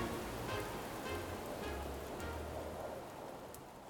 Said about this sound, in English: As the windstorm blazes on, you can feel the air get thicker with rain, as now it starts to sprinkle.